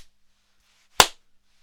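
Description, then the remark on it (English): A single sharp hand clap rings out once, loud and crisp, with a brief decay into quiet. No voices, just faint hiss before and after. “Oh, sick clap, bruv.”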